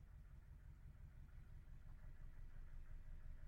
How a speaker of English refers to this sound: If you can hear, there's a boat going past. As you know, I live on a boat. There's a boat going past.